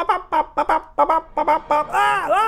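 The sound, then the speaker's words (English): A rapid run of about eight short clucks from fowl, ending in a longer warbling gobble-like call, loud with no talking. “And then you put the bird seed on the genitals and you let the birds loose like Hitchcock style.”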